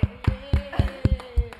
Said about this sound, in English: Clap for him, team.